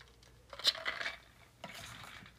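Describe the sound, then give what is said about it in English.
Ice cubes clink against a wine glass as someone drinks wine, in two short bursts of bright, high-pitched taps and rattles, one sharper chime standing out, with a soft shuffling sound between them and no voices. “So, and excuse me if you hear the sounds of ice cubes, that's me drinking wine.”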